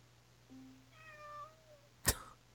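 A single drawn-out cat meow, played back by an Alexa smart speaker skill at moderate volume over a faint steady hum, ends in a brief sharp click.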